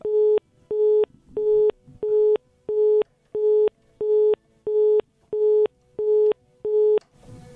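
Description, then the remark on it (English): A telephone busy tone beeps steadily after the phone connection to a caller on a broadcast dropped, about eleven evenly spaced pulses at moderate loudness, with faint background noise between beeps and a brief rustle at the end. “we lost connection with Mr. Kunle Lawal there via phone”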